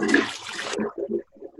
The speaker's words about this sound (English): was that the toilet flushing? That's the toilet flushing.